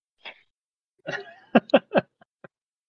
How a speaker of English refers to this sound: Let me clear my throat.